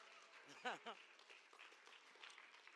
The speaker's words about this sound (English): Now, on this one, I need to take some water to say it better. In the old time, they would clap for the pastor when he's taking water.